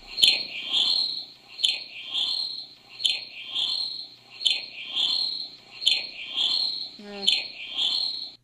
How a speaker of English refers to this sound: Sound better if the cricket would shut the fuck up.